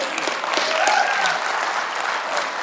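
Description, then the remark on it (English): A church audience claps steadily together as a clap offering, a dense sustained wash of applause from many hands, with faint voices mixed in underneath. “If you agree, let me hear with a good clap offering.”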